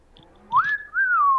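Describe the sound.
A person whistles a short two-part tune, a clear rising note followed by a gently falling one, fairly loud, with no talking over it.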